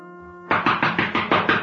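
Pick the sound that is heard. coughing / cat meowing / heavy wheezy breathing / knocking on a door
knocking on a door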